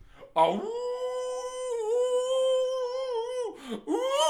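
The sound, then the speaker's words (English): A person imitates a wolf howl: one loud, sustained, high-pitched vocal cry that swoops up, holds steady for about three seconds, dips, then starts rising again at the end. “Aren't you gonna do your howl?”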